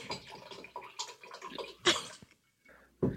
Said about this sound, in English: I thought there was a waterfall, but I think that's... Is that maybe on your end?